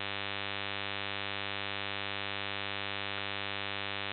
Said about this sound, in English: We got a lot of static. Ladies and gentlemen, we're going to try to get some of this static out of the line first.